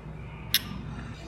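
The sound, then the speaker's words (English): A single bright clink of glasses of 4.2% porter beer touching in a toast, sharp and ringing briefly before fading into a low, steady background hum. “This was a beer for us to consume while full. Yeah, cheers. Cheers.”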